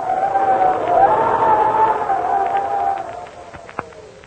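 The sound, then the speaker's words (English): Howling cold wind: a steady rushing roar with a moaning tone that wavers up and down, easing off slightly toward the end, where a single sharp click sounds. “Say, when you hear the wind blowing like this, what's the first thought that pops into your head?”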